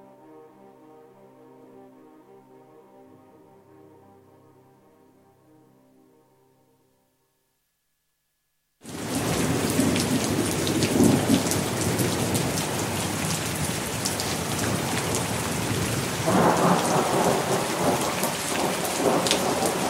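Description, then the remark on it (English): A soft, tonal passage fades into a brief silence, then a heavy thunderstorm bursts in on a wild night: steady, loud rain pours down nonstop, with deep thunder rumbling beneath it. “He that has and a little tiny wit, with hey ho the wind and the rain, must make content with his fortune's fit, for the rain, it raineth every day.”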